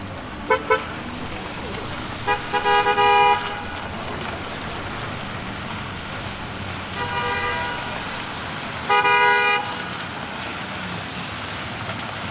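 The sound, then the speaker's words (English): Busy street traffic at the corner of Park Avenue and East 95th Street, a steady wash of road noise punctuated by several car horn honks, short toots followed by longer blasts, recurring every few seconds. “You're standing on the corner of Park Avenue and East 95th Street.”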